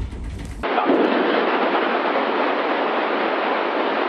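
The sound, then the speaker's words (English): A sonic boom from a squadron of NORAD fighter jets breaking the speed of sound over Washington while intercepting a Cessna Citation, recorded on a Ring camera or cell phone, hits abruptly, then a loud, steady, roaring rumble fills the next few seconds without fading. No voices are heard. “As the squadron of fighter jets broke the speed of sound, they created a sonic boom, which was caught on ring cameras and cell phones across Washington.”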